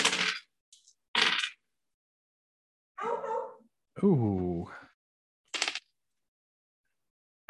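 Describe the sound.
Dice clatter across a hard tabletop in several short rattling bursts, with a person's voice exclaiming in the quiet gap between them.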